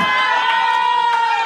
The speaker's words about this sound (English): That was the first. That was the first cheering for Bumble I've ever heard in my life.